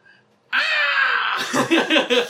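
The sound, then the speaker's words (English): A voice imitates a shrieking creature with one long, loud, strained screech that slides downward, then breaks into choppy, rasping squawks and gasps. Energetic. “Like screaming at that new sound now.”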